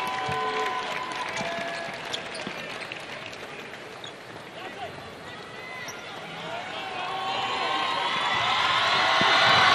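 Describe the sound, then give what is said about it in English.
A crowded gym at a basketball game between Forest Hills and Green Central, with a large Yellow Jackets crowd, hums with indistinct chatter as sneakers squeak and a ball bounces on the hardwood, the crowd noise swelling louder toward the end. “And the Yellow Jackets are represented quite well with their crowd.”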